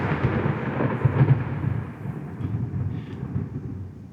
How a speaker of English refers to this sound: and they look to the distance, and those who look out and see lightning and thunder approaching.